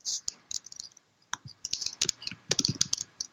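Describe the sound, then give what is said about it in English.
Typing on a computer keyboard: quick, irregular key clicks in bursts, a brief pause partway through, then a denser flurry of keystrokes toward the end. “typing.”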